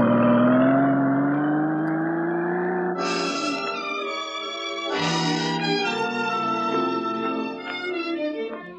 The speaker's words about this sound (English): In his big Italian car. Searchlight on, trailed along the pavement, then it gathered speed, went on ahead towards the town.